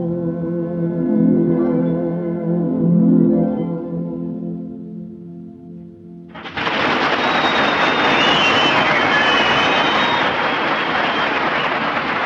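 An airplane engine at an airport gate, at gate number 3 for a plane to Washington, idles with a steady, droning hum, then abruptly surges into a loud, rushing roar with a thin whine on top that holds to the end. No voices.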